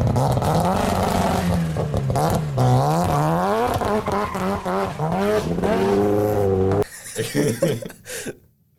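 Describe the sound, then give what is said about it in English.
A rotary-engine car revs hard, its buzzy, raspy tone climbing and falling through several blips before dropping away abruptly near the end. No one speaks. “Oh, and nothing can beat that almost two-stroke sound.”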